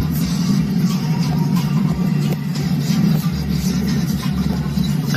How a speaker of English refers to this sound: The 18-wheeler has to be going at least 30, 35 miles per hour down this freeway. And he's not stopping. And the car is being dragged.